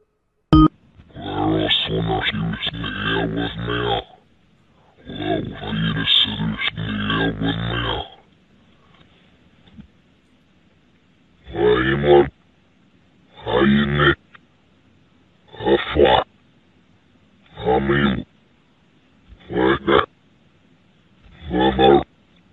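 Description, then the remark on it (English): A deep, distorted demonic voice speaks reversed, garbled syllables through a tinny phone line, heard by calling a phone number hidden in a video's source code: two long groaning phrases, then six short bursts separated by brief pauses of quiet line hiss. Played forwards it says 'Bravo, Echo, Lima, Alpha, India, Romeo.' “In the source code of this video was a phone number, which which when called, you would hear a demonic voice speaking backwards.”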